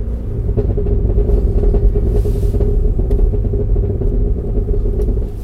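A car engine rumbles loudly and steadily, with a handful of sharp, faint pops and crackles of overrun from the exhaust scattered through it as the engine fires back. No one speaks.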